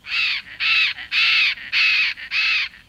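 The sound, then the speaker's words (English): A bird in a tropical rainforest gives five loud, harsh squawking calls in a steady, evenly spaced rhythm, with brief pauses between each raspy cry and no voices present. “It's a lush world that scientists and nature travelers explore by boat, where some of the world's most iconic birds find fruit in the trees or perch at the water's edge.”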